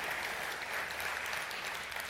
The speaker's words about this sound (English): Can you give Mr. Bird a big round of applause? Thank you, sir.